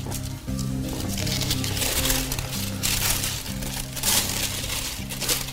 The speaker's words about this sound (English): Step two, making the sail. We're going to take our tissue paper, open it up and fold a diagonal.